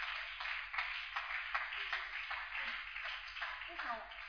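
A crowd claps steadily and densely for a few seconds, a continuous rush of many hands with no single beats standing out, fairly loud.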